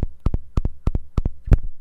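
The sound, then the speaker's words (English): Deep bass thumps from a bass sounding by itself pulse alone in a steady double-beat rhythm, about five quick pairs like a racing heartbeat, fairly loud with no voices. “Anyway, God's heartbeat is up. He loves you. Anyway, we might have to go without the bass.”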